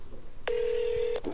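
A telephone keypad tone while dialing: one steady electronic beep held for under a second, followed by a short faint blip, clear with no talking over it.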